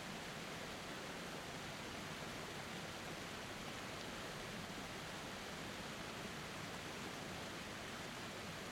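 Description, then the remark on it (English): A steady, unbroken rush of falling water from a waterfall fills the whole stretch with an even, hissing roar and no voices. “Just stand there in this moment and soak in the beauty of this waterfall, of the peace that is flowing over you right now.”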